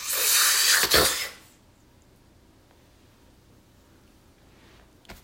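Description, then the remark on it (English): A loud, broad whooshing rush of air surges for about a second and a half, peaks sharply, then cuts off into near silence, with a faint click near the end. “And there's an enormous sucking sound.”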